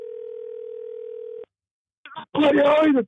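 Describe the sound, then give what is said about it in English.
Telephone dialing tones as a man calls someone back: a steady, clear electronic phone tone holds for about a second and a half, stops with a click, and after a brief pause a loud voice starts talking. “How dare he hang up on me? Let's give him a call back.”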